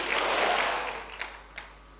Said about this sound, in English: Clap your hands and say, it's over.